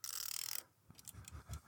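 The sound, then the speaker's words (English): A chat timer ticks: a quick, buzzy burst of rapid mechanical ticking, then a short pause and several slower, sharper clicks with soft low knocks underneath. No one speaks. “Do I hear the chat timer over there?”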